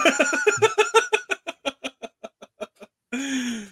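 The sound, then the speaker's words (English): A chicken clucks in a rapid run of sharp bursts that gradually slow and space out, then breaks into a drawn-out, loud squawk after a short pause. “Always the chicken.”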